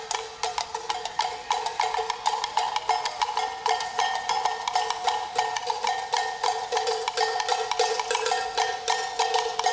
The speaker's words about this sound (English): they all just have a cowbell and they're just doing this like rhythm thing on the cowbell